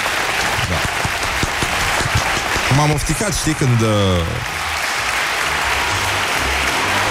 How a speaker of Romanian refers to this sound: Nu știu, simt nevoia să... vreau niște... Ce vrei? Vreau aplauze. Bravo.